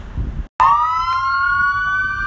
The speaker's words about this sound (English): Well, this is common in LA. Sirens. Got off the bus. Ambulance and police car. So, I don't know what's going on. They stopped.